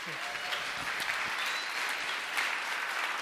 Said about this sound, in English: Give my son a round of applause.